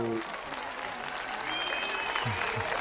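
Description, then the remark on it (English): Steady, dense applause at the opening of the Dr. Joe Show fills the whole stretch. It is a continuous wash of clapping with faint voices and a brief whistle-like tone mixed in underneath. “100th applause.”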